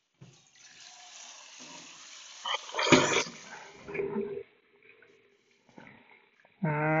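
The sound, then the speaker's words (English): Water runs from a tap as someone gets some water, with splashing and clattering handling noises, pausing and restarting, ending with a rising tone as a vessel fills. “Hold on, I'm gonna get some water.”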